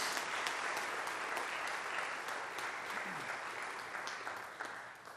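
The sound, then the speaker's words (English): The audience at Court Street Church applauds to welcome a guest speaker, a dense, even wash of many hands clapping that holds at a constant loudness for about five seconds, tapering only slightly at the end with no voices. “And I hope that you'll welcome him with me, please, by putting your hands together.”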